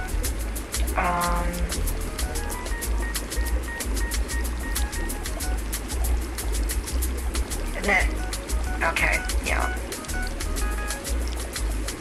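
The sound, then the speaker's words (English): Water bubbles and gurgles steadily for the whole stretch, a dense, constant churn with rapid little pops and a few brief squeaky bursts, while a muffled voice sits faintly in the background. “Don't you like the sound of my bubbles?”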